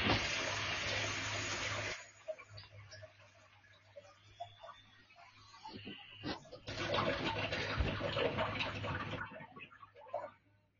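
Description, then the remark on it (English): Water gushes steadily from an old water line for a couple of seconds, cuts off, then runs again in a strong hissing stream before tapering away, with a low hum underneath and no talking. “Getting the old water line.”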